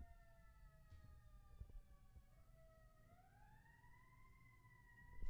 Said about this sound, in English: Can you hear the ambulance? Here, let me put the mic. See. Oh, can you hear it?